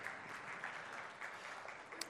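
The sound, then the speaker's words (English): A church audience applauding after a reading of names from the book of Ezra: dense, steady clapping from many hands that holds evenly for about two seconds at a fairly soft level, with no voices standing out. “we applaud your literacy.”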